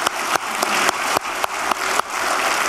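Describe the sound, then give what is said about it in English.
An audience claps for an offering piece, steadily, a dense wash of many hands with sharper bursts standing out every fraction of a second, fairly loud and with no voices over it. “How many of you want to clap for that offering piece?”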